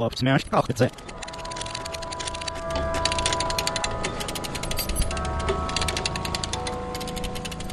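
A ratchet jack being worked, giving off a steady run of rapid, sharp metallic clicks that continue without pause for several seconds over a low background hum.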